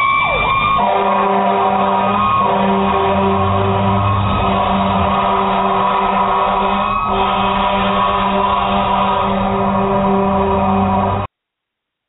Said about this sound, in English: Oh, my goodness. What was that? The longest siren in the world, Manny. I love that siren, man.